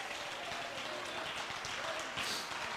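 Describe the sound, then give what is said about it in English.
A crowd claps their hands in praise of God throughout the building, a dense wash of many overlapping hand claps with no clear rhythm, moderately loud and sustained throughout, with faint voices mixed in. “Come on, clap your hands and praise Him all over this building.”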